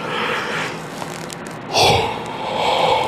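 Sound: a yawn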